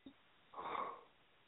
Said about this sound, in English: No, he ain't. He's sitting there snoring like a motherfucker.